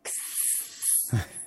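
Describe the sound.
A voice imitates an aerosol spray of SPF 100 spray-on sunscreen with a steady, bright hissing held for about a second, swelling briefly, then ending in a short throaty breath. It is moderately loud.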